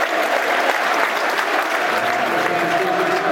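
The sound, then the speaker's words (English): Sustained applause from the East Stand crowd at a football match as player Ian Fleming comes off the pitch, a steady dense wash of clapping that stays loud and even throughout, with a faint murmur of voices underneath. “Taking the applause of the East Stands, Ian Fleming.”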